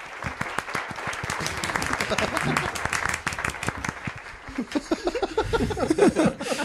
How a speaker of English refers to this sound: Silent golf applause. Wordless.